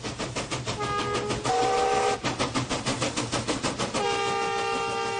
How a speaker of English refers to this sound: It's 1969. There's a steam train pulling up to the platform and a line of children are waiting to board.